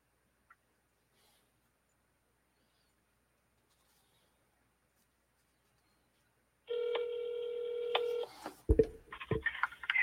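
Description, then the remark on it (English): After a long stretch of near silence, the steady electronic ringing tone of a call being placed from a cell phone sounds for about a second and a half, followed by a few sharp clicks and another tone starting. “I wish that I had dialing music for my cell phone, but I don't. So bear with me while I get him on the phone and I get the levels adjusted so we can do this tonight.”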